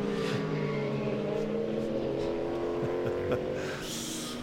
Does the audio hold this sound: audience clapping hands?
no